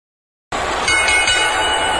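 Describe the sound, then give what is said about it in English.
The starting bell of the Mr. Perfect versus Bret Hitman Hart match at SummerSlam 91 rings with bright, metallic clangs over a loud, steady roar from a packed crowd of 20,000 plus in the Garden that kicks in abruptly after half a second of silence. “Bell's gone. This one's underway.”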